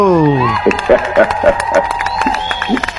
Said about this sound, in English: Oh, the crowd is happy. Well, thank you. The crowd sounds real happy.